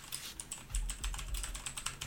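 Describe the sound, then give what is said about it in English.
Rapid typing on a computer keyboard while answering quiz questions, a steady flurry of clicking keystrokes with a low rumble underneath and no voices. “I'm also trying to answer them as quick as I can, just in case you think I'm cheating because of all this typing, because I'm not keeping note of them.”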